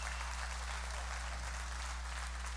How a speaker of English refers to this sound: Come on, give the Lord a hand clap of praise right there.